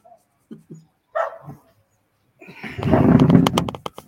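Dogs bark in a few short, separate yips, then break into a louder, harsher flurry of barking, with no talking.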